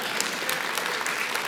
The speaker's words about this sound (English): Don't clap. I'm not done. Having said that, don't be a moron. Now you can clap.